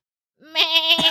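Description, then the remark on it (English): A person imitates a sheep with a single wavering, nasal bleat, held for about a second, loud with no other sounds around it. “Let's all do our sheep.”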